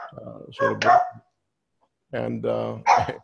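A dog gives two fairly loud bursts of drawn-out, yowling barks, each lasting about a second, separated by a short silence.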